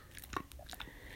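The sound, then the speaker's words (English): A female dog gnaws on a dried yak cheese chew block, with several short crunching and biting sounds in an irregular rhythm at low volume, and no talking. “She has one of those dried yak cheese blocks that are supposed to be a good chew toy for them, and she's just like chewing on that.”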